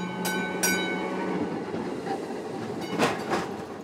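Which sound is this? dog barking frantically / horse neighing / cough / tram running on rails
tram running on rails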